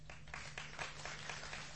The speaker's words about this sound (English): Very good, very good. Give yourselves a clap.